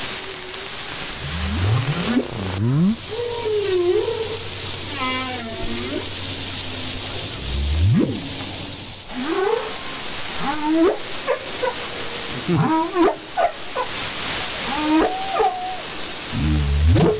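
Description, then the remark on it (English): Humpback whale song recorded underwater: a series of sweeping moans, rising whoops and wavering harmonic calls over a steady hiss of water noise, with no voices. “Let's go to the humpback whale in the sea again, all right?”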